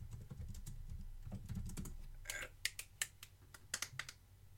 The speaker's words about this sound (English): I'm typing it very slowly because I'm trying to think how it's been spelled. How's it spelled?